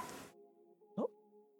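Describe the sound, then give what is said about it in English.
A single short, somewhat muffled bark from a household pet dog sounds once, after a brief burst of rustling noise at the start. Otherwise the background is quiet, with a faint steady hum. “And then, oh, my dog's freaking out.”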